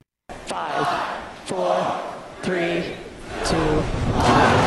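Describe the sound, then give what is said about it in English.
A large crowd at the Falcon Heavy rocket launch cheers and shouts continuously, loud overlapping voices rising in repeated surges of excited yelling over a steady roar of noise. “The crowds were crazy. It was like almost like a rock and roll concert.”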